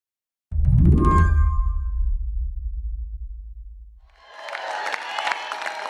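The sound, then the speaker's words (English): A deep booming hit with a ringing tone fades out, then a crowd at Donald Trump's Iowa Republican caucus victory event breaks into steady applause and cheering that continues loudly to the end. “What a turnout, what a crowd.”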